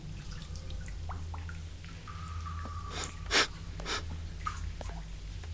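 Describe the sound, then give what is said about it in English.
Horses snort and breathe heavily in a few breathy bursts, one sharper and louder than the rest midway, over a steady low rumbling hum with no talking. “Horses.”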